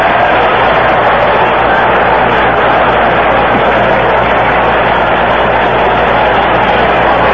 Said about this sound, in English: Crowd reaction to a catch made in the stand.